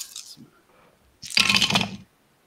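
A handful of dice clatters across a hard surface in a dense, rattling burst lasting just under a second, fairly loud, preceded by a few faint clicks and no talking.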